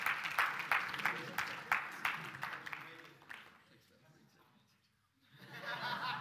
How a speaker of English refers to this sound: All right. Let's give her a round of applause for that one. Good job.